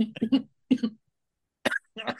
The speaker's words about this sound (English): Pause for coughing. Coughing. Wheezing.